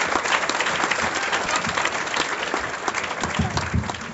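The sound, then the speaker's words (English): Steady audience applause at a comedy show welcomes comedian Leanne Lohr. Many hands clap in a dense wash at a constant loud level for several seconds, with no voices rising above it. “Would you please give an amazing Paul's welcome to Leanne Lohr! Leanne Lohr, let her hear it!”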